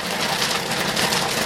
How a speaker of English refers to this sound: The snap, crackle, and pop of kernels can be heard almost constantly at Pop's Kettle Corn.